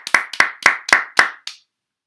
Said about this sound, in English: Almost a million cases. Why are we clapping for that? Because it's a big number, you know.